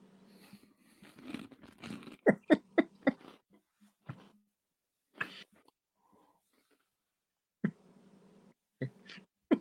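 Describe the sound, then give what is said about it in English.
Crisp crunching of a dry, stale snack being chewed, a rapid burst of sharp bites followed by a few scattered crunches with pauses between, no talking. “It smelled like some kind of cream cheese bagel thing. But now it just smells like maybe shitty stale popcorn.”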